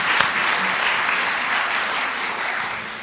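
A crowd claps steadily for about three seconds, a dense, even wash of many hands with no voices rising above it.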